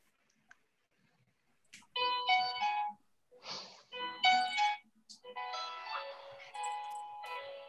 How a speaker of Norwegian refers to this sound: For å begynne med, for å komme I ordentlig stemning, så skal jeg spille ringetonen på telefonen min.